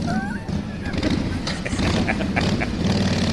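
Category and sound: vehicle, motorcycle engine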